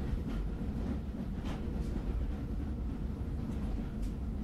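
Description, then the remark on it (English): A passenger train pulls out of the station at Havre, rolling along with a steady, heavy low rumble, a few faint clacks rising above it now and then, with no voices. “So as we pull out of Havre, I'm with Meredith, who I think is making one of the rare train journeys of her life.”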